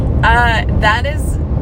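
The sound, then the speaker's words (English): A steady low rumble of road noise fills the interior of a moving car during a six-hour drive, with a voice briefly talking over the constant engine and tire drone. “we've been in the car for 6 hours.”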